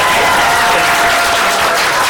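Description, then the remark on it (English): A crowd claps steadily and loudly, a dense wash of many hands applauding together, sustained for a couple of seconds with no talking over it: a round of applause for the semifinalists of a debate. “Okay, big round of applause for our semifinalists here.”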